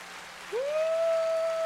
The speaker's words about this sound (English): All right, now for the cool. Want to give a special applause?